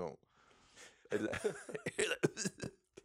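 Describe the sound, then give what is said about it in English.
A person coughs and sputters while putting on an Aussie-ish accent, in a string of harsh, choking bursts mixed with strained voiced sounds, after a quieter, breathy lead-in. “That was where you just got choking on that accent.”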